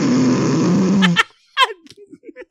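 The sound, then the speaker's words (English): A voice mimics a loud, raspy snore for about a second, a rough rumbling drone that cuts off abruptly, followed by a few quieter spoken sounds. “Like you snored like a motherfucker”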